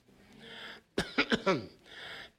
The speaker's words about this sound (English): Maybe I clear my throat. I'm going to say it better this time.